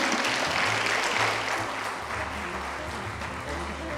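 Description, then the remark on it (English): An audience at the Seattle Public Library Central Library applauds the speakers at the end of a talk, a dense steady patter of many hands clapping at once, fairly loud and continuous throughout, with no voices standing out above it. “Can we give a warm round of applause to our speakers?”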